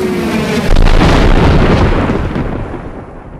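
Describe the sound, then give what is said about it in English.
A missile explosion: a rising tonal whine gives way to a sudden, massive blast, followed by a loud, roaring rumble that slowly fades over a few seconds. No one speaks. “Guys, there's the missile.”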